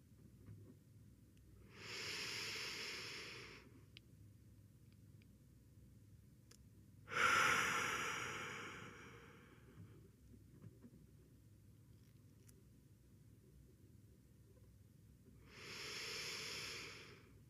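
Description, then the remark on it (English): Slow, deep breaths drawn into the stomach, each followed by a long quiet pause held at the top, with a louder sighing exhale in the middle; three breaths in all, taken as a guided breathing exercise, no talking. “Breathing into our stomach, holding for a moment at the top.”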